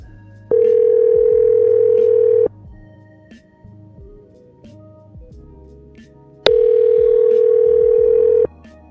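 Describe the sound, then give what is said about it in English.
Telephone dialing tones from a dialing machine placing a call: two loud, steady, mid-pitched tones, each held for about two seconds, separated by a long pause with only faint low background noise. “It says it's, I don't know what's going on with the dialing machine.”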